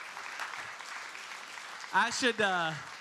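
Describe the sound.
An audience claps steadily for Steve, who has just finished a race in 11 hours and 44 minutes: a dense crackling patter of many hands that holds for about two seconds before a voice breaks in briefly over the fading applause.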